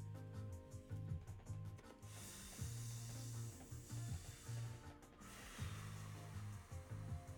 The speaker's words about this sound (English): I like how this sounds. So we gonna pour this up one time for the one time.